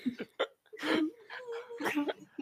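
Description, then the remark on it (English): A person imitates sobbing with their voice, making a few short, broken, wavering cries and sniffly breaths in quick uneven bursts, moderately loud. “In the distance, the sound of sobs.”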